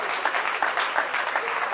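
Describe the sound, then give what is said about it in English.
Steady, dense applause from a large crowd, a continuous wash of many hands clapping at once with no voices standing out, given as a clap offering to the Lord for Christmas. “Come on, let's give the Lord a clap offering for Christmas.”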